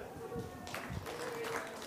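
A crowd breaks into applause after a brief pause, a dense, subdued wash of clapping continuing steadily to the end.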